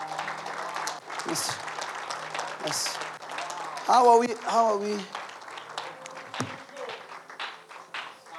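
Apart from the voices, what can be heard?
audience applauding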